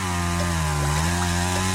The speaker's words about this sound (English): First, we need to chop the oak tree down. This may feel counterintuitive, but it needs to be done to make lots of the new oaks. I just fire up the chainsaw.